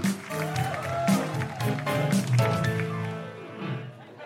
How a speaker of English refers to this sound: Then welcome, welcome, welcome to the Guilty Feminist. A huge round of applause for Nikki Britton, Michelle Ryan and Grace Petrie.